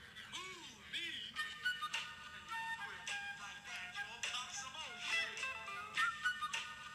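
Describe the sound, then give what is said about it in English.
Someone whistles a short tune of sliding, wavering notes against a busy, cluttered background, the melody rising and falling at a moderate level for several seconds. “Yeah, he was whistling that.”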